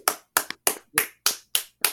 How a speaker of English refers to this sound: give yourself a round of applause.